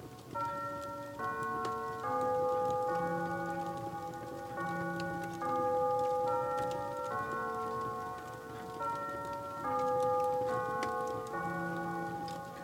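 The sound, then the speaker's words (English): A clock chimes the three-quarter hour, a sequence of clear bell-like notes rung in steady, measured phrases, with a faint ticking or pattering sound in the background. “The next 15 minutes seemed to stretch so long that more than once he was convinced he must have dozed off and missed the clock chime.”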